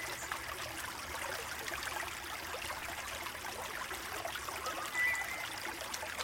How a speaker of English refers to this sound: not one, but three spectacular waterfalls. The waterfalls glisten from the moonlight as they fall into a pool below.